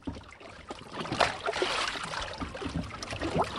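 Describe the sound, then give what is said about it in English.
Dark green lake water laps and sloshes gently against the hull of a boat as it is tied to a yellow buoy on Lake Champlain, Vermont, on a hazy mid-afternoon; a steady wash with small irregular splashes and no voices. “a haze floats over the dark green water as dive master Doug Jones ties his boat to a yellow buoy”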